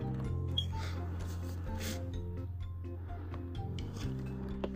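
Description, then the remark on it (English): Quiet scratching and scraping as the small sharp pin on the back of a name tag is dragged through packing tape on a box to open it, with small rasping bursts over a steady low hum in the background. “So I can just cut it that way.”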